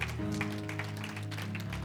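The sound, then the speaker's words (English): A church audience claps hands in praise at the end of a prayer, a steady scattered patter of applause under sustained, droning organ chords that fill the low end throughout. “Give the Lord one more hand clap of praise before you're seated.”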